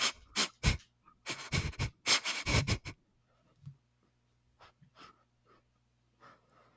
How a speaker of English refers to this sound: There's somebody sniffing around the door.